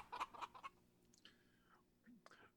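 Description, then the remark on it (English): A person imitates an Austrian chicken, making a quick run of sharp, clucking bursts, followed by a drawn-out, warbling squawk and a final short cluck, moderately loud. “That's an Austrian chicken right there, man.”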